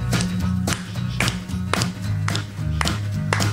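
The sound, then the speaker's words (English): Steady hand claps land about twice a second, crisp, keeping time over a low, tuneful music bed with no voices. “I don't know what song that is, but I'm clapping.”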